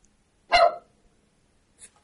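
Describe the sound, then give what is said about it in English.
A single loud, sharp dog bark rings out, followed about a second later by a shorter, fainter second bark, with quiet in between and no talking. “The dogs always know.”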